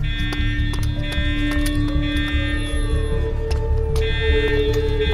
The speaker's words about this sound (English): That fucking alarm.